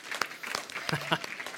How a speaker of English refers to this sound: Well, if you are a teacher, a middle schooler, high schooler, college student, or parent, let's just go ahead and stand up and give everybody an applause for that.